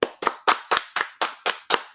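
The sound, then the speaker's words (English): Applause for wrestler Keith Lee's signing with AEW, in the form of eight steady, evenly spaced hand claps, sharp and bright, about four per second, with no voices. “Can we get applause?”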